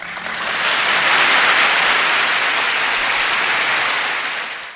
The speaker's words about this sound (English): Yeah, it was a beautiful speech. She received a lot of boos. You heard. Mixed with some applause, I think. Mixed with some applause. I told you while it was playing, the story goes that John Wayne was in the front row booing.